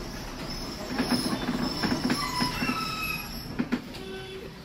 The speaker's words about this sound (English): Chatby? Chatby. The tram stops at Chatby.